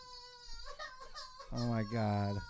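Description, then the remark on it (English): An adult voice mimics a frightened baby's cry: a thin, high whimpering wail that swells into a louder, strained sobbing burst near the end, with some breathy vocal noise before it. “Baby scared.”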